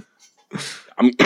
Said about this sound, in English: I'm coughing.